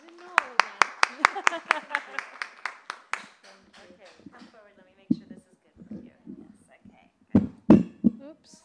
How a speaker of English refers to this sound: Let's please give her a warm round of applause.